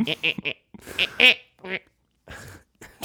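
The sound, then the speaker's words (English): A voice imitates a goose's honk with a string of short, nasal, squawking bursts, loud, coming in an uneven rhythm with brief pauses between them. “But a goose just like, eh! And stabbing you with its wing.”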